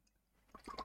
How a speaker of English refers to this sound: Actually, I'm going to take a sip.